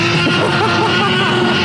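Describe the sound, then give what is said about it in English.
A harsh, buzzy roar sound effect plays loudly from a small keychain toy speaker, one continuous blast of distorted noise lasting under two seconds, with no one talking over it. “Play the roar. Come on, we got the roar, right?”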